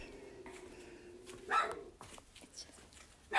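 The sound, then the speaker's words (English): A dog barks a couple of times upstairs, muffled, with sharp bursts separated by a quiet stretch over a low steady hum. “And we got the dog barking upstairs, of course.”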